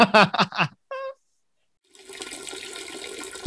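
A steady, broad rush of pouring water, a waterfall sound effect added in editing to stand in for someone going to the toilet, starts after a short burst of speech and a brief tonal note, then continues at an even level to the end.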